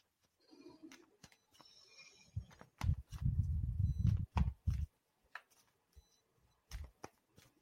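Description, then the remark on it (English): A deck of tarot cards being shuffled, with irregular papery slaps and riffles, a denser burst of rustling in the middle, then a few scattered taps. No one speaks. “Okay, so this is my tarot deck that I'm using. So I'm just going to shuffle.”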